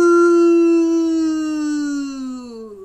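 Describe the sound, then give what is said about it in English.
Voices let out one long, drawn-out moo in imitation of a cow, while pretending to be a cowslip growing bigger. It is a loud sustained tone that holds steady and then slowly sinks in pitch over about three seconds. “We're going to grow bigger and bigger and bigger and give me a big moo.”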